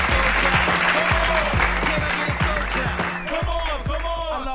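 Loud, sustained applause from a crowd clapping for hip hop's 48th birthday, a dense wash of clapping that carries on steadily throughout, with a deep, pulsing beat thumping underneath.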